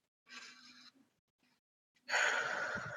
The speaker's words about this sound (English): I would like to invite us all to just start with a deep breath.